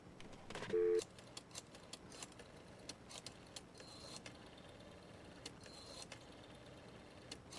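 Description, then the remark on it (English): Pages of a telephone book being flipped: a louder papery riffle at the start, then a steady series of quick, soft page turns, with no voices. “The sound of the flipping of pages.”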